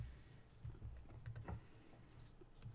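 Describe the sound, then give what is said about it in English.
Soft crinkling and rustling as a piece of paper is rolled up, with a scatter of small crackles and ticks over a few seconds and no voices. “Let me just quick roll this piece of paper.”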